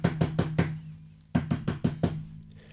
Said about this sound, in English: Wow, that's a pretty nice mansion he's got there. Let me just go over here. Okay. Let me knock on the big door.